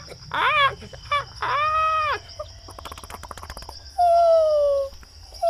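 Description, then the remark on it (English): Birds call back and forth to each other from between the trees in short, bright bursts, some rising and falling, others drawn out, over a steady high insect hum and faint ticking, with no one speaking. “You hear birds.”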